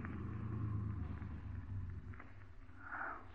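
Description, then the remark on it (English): A car engine rumbles low and steady as the car stops, its deep drone continuing for a few seconds with faint shuffling sounds over it and no voices. “Just stop the car.”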